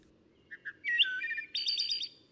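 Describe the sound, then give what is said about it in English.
Outdoors, in a field recording from the Macaulay Library at the Cornell Laboratory of Ornithology, a bird sings a short phrase: two quick introductory chirps, then a bright warbling trill that pauses briefly and resumes with a higher, rapid flourish, over faint low background hum. “Working with the Macaulay Library at the Cornell Laboratory of Ornithology, Return of the Birds weaves dozens of field recordings into the narration”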